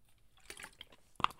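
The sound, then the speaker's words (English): Soft handling noises from a water bottle, with faint wet gulping and crinkly clicks, then a sharper plastic crunch near the end. Quiet and brief, with no talking. “So here's some ASMR of my water bottle right now.”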